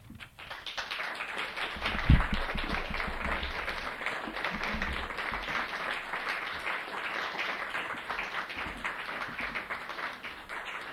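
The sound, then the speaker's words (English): An audience applauds steadily for about eleven seconds, a dense, even wash of many hands clapping at once that keeps a constant loudness throughout, with no voices over it. “There were moments that I wonder, really, should we applaud or should we wipe the tears?”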